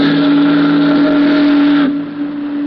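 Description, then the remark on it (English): A loud, deep whistle from a big stern-wheel steamboat moving down a broad river channel on a dark, moonless night holds one steady mournful blast for about two seconds, then cuts off, leaving the low rumbling churn of the huge stern wheel. “The big boat's doleful whistle and the rhythmic churning of her huge stern wheel were the only audible sounds.”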